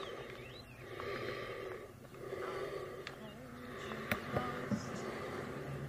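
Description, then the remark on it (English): Heavy, muffled breathing of Michael Myers inside his mask, slow drawn-out inhales and exhales with a hollow, enclosed quality, over a steady low rumble with a couple of brief clicks. “No, it's him breathing inside the mask, but that's the same sound we get at the very end of the movie that was released last year after the credits.”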